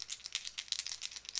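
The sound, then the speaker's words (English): Two six-sided dice are picked up and rolled for a sneak attack damage roll in a tabletop game, clattering and rattling in a rapid, uneven series of light clicks, fairly quiet, with no talking over them. “Make sure I grab the right dice.”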